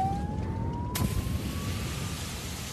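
A fire engine siren wails in one slow rising tone over a steady low rumble, with a sudden sharp burst of noise partway through. No one speaks.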